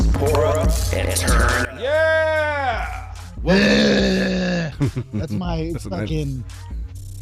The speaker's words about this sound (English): That's my fucking war scream. That's when I squat 200 pounds and my bowels come out of my fucking anus.